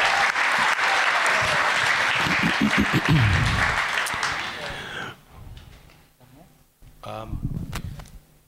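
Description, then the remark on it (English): A crowd breaks into loud, dense applause that holds steady for about five seconds, then thins abruptly to scattered claps and murmuring voices, with a brief swell of clapping near the end. “Come on, let's give him a big round of applause.”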